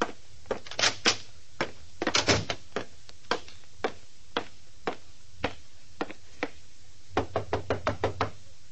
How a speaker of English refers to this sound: Nobody answered my knock at Jenny's dressing room.